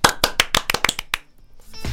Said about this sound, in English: No, they aren't sound effects. It's us clapping and making stupid noises.